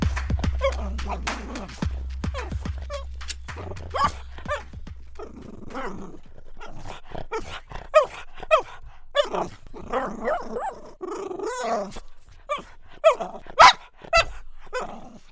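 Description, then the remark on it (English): A dog barks repeatedly and growls, with sharp irregular bursts of barking and a low rumbling growl in between, loud and alone without any talking. “That was Izzy the dog.”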